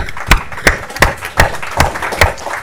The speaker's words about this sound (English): I think we should give them all, actually, a round of applause before we turn to questions.